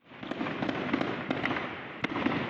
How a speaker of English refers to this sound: You're listening to a recent attack by the Red Wolves of Mogok against junta troops. Gem mining in Mogok has slowed, according to merchants. That's due to fighting like this in the area.